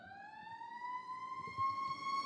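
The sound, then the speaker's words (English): A fire truck siren wails as the truck goes by, one long, slowly rising tone ringing with bright overtones above a low rumble of traffic, fairly loud and steady throughout with no one talking. “Fire truck just went by.”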